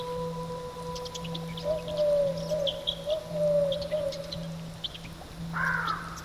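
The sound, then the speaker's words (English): Birdsong and flowing water, all made by the human voice: a wavering whistled line with scattered high chirps and a brighter rising call near the end, all over a steady low drone and a soft watery wash. “it incorporates not just birds but also water. And what's really lovely about that is that the whole of that album was made vocally, and every instrument in it is made by the voice.”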